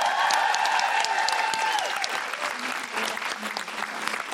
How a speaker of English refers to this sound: Thank you so much. Big round of applause for Clemency Carter.